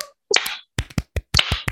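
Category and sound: crowd, hands clapping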